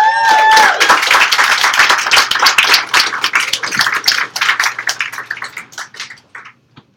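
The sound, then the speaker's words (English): A crowd bursts into dense applause for a poet, with a few whoops at the start, steady clapping that gradually thins out and fades to scattered claps before stopping. “Next up is, I think, another Yop debuter, so give this poet a big round of applause.”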